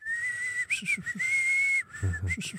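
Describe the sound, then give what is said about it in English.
A person whistles like a songbird, holding clear sustained notes broken by quick rising chirps and slides. Fairly loud, with faint low murmuring underneath. “I think they'd have whistled.”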